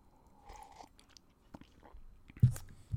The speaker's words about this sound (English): Let me get a little sip first.